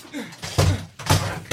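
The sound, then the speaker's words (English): A door slams shut, followed by a few more heavy thuds and bangs as the door is barricaded. “Why are you barricading the door?”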